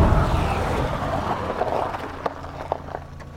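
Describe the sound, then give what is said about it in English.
A steady low engine rumble with broad road noise from inside a moving car driving to a Farm and Fleet store, with a few sharp clicks and knocks toward the end. No one speaks. “I'll just drop you off, then park.”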